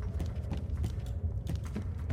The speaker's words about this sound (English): I'm barefoot. You can hear my feet slapping on the wood. As I'm walking across the bridge there.